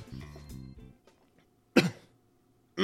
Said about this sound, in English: Sorry. Trying to clear my throat there and I almost died. Been coughing a lot this weekend.